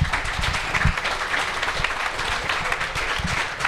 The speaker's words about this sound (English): I want to thank everybody for coming. This has really been a great event. Please give our panelists a round of applause.